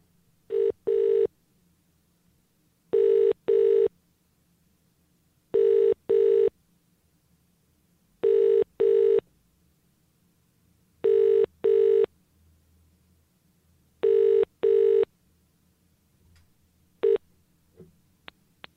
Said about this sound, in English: Should we phone the number and see what happens?